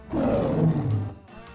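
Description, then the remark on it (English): A single loud lion roar, about a second long, rumbling low and sliding downward in pitch before fading, with no talking over it. “Simon says, roar your loudest roar.”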